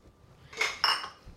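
A short splashy pour of pineapple juice into a glass, two quick bursts with a faint glassy ring, moderately loud, no talking.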